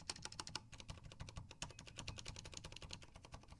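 Rapid, steady clicking of keys on a computer keyboard, with many crisp taps in quick succession and no talking.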